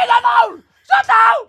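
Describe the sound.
A voice mimics the scream of a woman curler on Norway's mixed doubles curling team: two loud, drawn-out shrieking yells in quick succession, separated by a brief pause.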